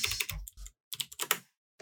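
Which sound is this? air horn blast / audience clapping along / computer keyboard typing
computer keyboard typing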